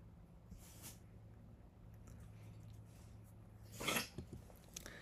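A dog hacks and retches in short, harsh bursts, a faint one early and a louder, rasping spasm near the end, over a steady low hum with no one talking.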